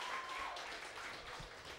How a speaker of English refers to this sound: All right, audience, it's going to come down to you deciding. If you feel like Jake won that one, round of applause.